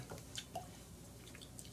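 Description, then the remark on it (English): A few small water drips fall into a glass of whiskey, with soft plinks and a quiet splash, separated by brief pauses against a faint background hush. “I need to lose much water on it.”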